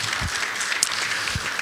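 A crowd applauds steadily, a dense wash of many hands clapping at once, continuous and fairly loud throughout the short burst, with a few low thumps underneath.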